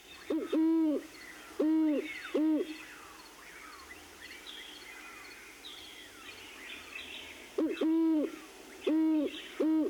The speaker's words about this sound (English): And I played that earlier. I'll play it again right now. This is the hooting, the courtship or pair bonding call of the great horned owl.